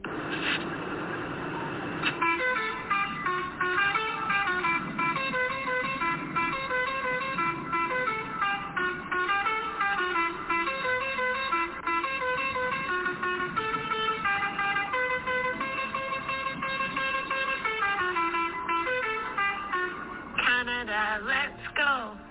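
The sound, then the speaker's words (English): A chorus of truck horns from a trucker convoy in Canada blares almost nonstop, with many overlapping sustained honks of different pitches layered together, loud, for over twenty seconds. “Hi, truckers. I'm from Ireland, and can I get a honk?”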